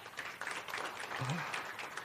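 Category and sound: crowd, audience applause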